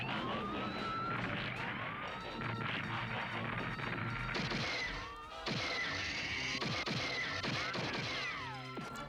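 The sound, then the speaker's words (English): A loud alarm siren wails at the Cape Carlson control tower as aircraft come down, with rising and falling sweeps layered over a busy din of crashes, thuds and sharp impacts throughout, with a brief drop in the noise about halfway through. “Sound the alarm.”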